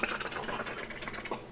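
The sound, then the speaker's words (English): A voice imitates fast robotic keyboard typing: a dense, rapid stream of sharp clicks and taps, steady, with no words spoken. “Is that a typing noise, or is that more of a like that's like a robot corn. That's like a robot super noise.”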